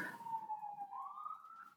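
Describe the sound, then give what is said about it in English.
A siren from an ambulance or police car wails steadily in the background, its tone gliding slowly downward then rising again, heard alone without talk. “There's an ambulance or some cop car somewhere in y'all's background.”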